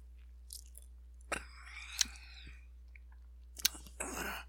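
Someone takes a sip of a 24-fluid-ounce cotton candy flavored malt beverage, with quiet wet slurps, lip smacks and small clicks spread over a few seconds, a low steady hum beneath and no talking.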